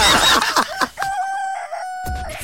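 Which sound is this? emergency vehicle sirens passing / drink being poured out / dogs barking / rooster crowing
rooster crowing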